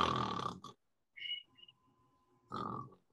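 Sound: yawning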